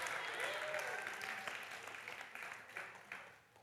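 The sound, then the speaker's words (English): A crowd claps steadily for a few seconds in a round of applause to Jesus: dense, overlapping applause that gradually thins and fades toward the end, with a few faint whistles early on. “Let's give a round of applause to Jesus.”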